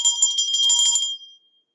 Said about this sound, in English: I will only ring that bell a few more times, I swear.